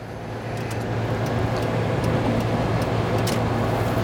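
car interior road noise

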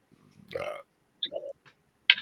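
burp

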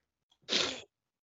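sneeze

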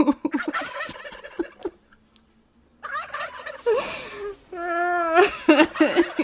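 turkeys gobbling

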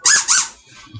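squeaky toy being squeezed

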